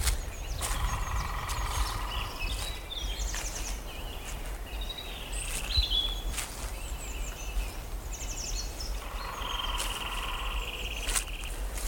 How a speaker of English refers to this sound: I think that's a lesser spotted woodpecker.